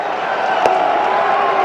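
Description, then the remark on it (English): A ballpark crowd claps steadily, a dense, even wash of many hands with a murmur of voices underneath and one slightly sharper crack partway through. “It's a lot of clapping going on at the ballpark.”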